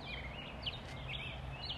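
Several birds chirp outdoors among tall trees in short, high, sweeping calls scattered across the moment, set against a steady low background rumble, soft, with no one talking.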